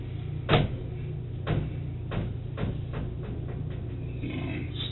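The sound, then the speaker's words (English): A door being handled, with a few irregular clunks and thumps over about two seconds, the first the loudest, above a steady low hum. No one speaks. “That's just the door.”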